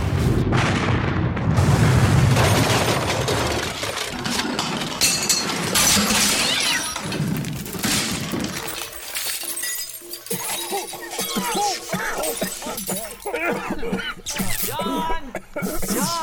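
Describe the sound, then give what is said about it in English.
A loud dynamite blast, set off to get out of a place, opens with a deep rumbling boom, followed by a long cascade of shattering glass, clinks and clattering debris that keeps crashing for many seconds. “I have something better than a fistful of dollars to get us out of here. What's that? A fistful of dynamite.”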